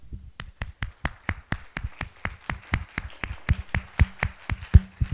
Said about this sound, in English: when everybody claps their hands, when somebody says, let's all clap our hands.